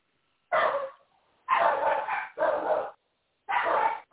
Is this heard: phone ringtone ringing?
no